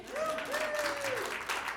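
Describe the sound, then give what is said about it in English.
A crowd claps steadily and densely throughout, a continuous wash of applause, while a single voice holds a long, wavering high note over the clapping. “You can clap to that.”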